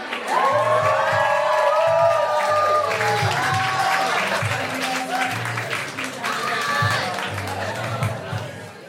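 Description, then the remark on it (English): The audience at 21 Soho claps steadily and loudly throughout as the host is welcomed to the stage at the start of a comedy club show, with high whoops and cheers rising over the applause, strongest early on and again near the end. “So please clap, whoop, and cheer.”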